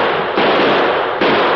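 Loud gunfire with no voices: a harsh, noisy blast followed by two sharper reports less than a second apart, each leaving a rough roar that fills the gaps.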